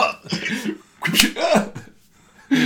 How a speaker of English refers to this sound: Oh, yeah, he's just giving me a little pat on the back of the head, said it'll help with the signing.